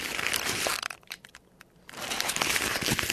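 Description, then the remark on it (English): A raccoon walking along a fence, heard as steady rustling and crunchy scraping that briefly drops to a few faint ticks and taps before the scuffling resumes. No one speaks. “That's him walking along the fence.”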